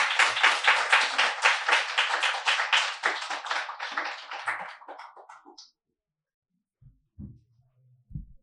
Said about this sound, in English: More applause, please, for YZ Chin.